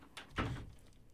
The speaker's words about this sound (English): I'm going to slam the door, too, now. Don't slam the door.